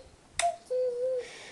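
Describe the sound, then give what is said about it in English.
A single sharp plastic click from a toy dog biscuit on the side of a toy with five chunky buttons and a roller, pushed up and down, followed by a brief squeak and then a steady mid-pitched electronic tone lasting about half a second, with no talking. “And then up to the side, you've got this dog biscuit that kind of clicks up and down, as you could hear.”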